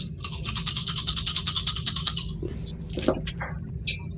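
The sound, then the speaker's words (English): Seven dice rattled in a fast, steady shaking rhythm for about two seconds during a tabletop game, followed by a brief sharp clatter as they are rolled out. No one speaks. “Four, five, six, seven dice.”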